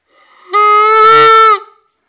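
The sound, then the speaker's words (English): A Primos Canada Goose Flute call blown once: a single loud, reedy, buzzing note lasting about a second, steady in pitch and rich in harmonics, with no talking over it. “But so, yeah, the Canada Goose Flute from Primos.”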